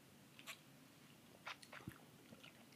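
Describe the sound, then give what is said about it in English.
Quiet first sips from a cocktail glass with lime over small ball-shaped ice cubes, with a few soft clinks and slurping mouth sounds spaced irregularly across a near-silent background. “First sips. Let's do it. First sips.”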